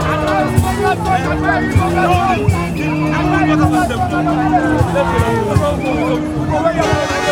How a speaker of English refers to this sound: But only once, in the distance, did we catch the hum of a boo-boo group blowing their horns.